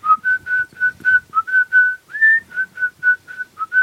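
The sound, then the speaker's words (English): A person sitting at a little card table while cataloguing phonograph records whistles a bright, steady melody of short, evenly spaced notes with one longer rising note near the middle, clear with no talking. “And one day when I was cataloging one of the records, Ira was sitting near me and I was sitting at a little card table and I was whistling.”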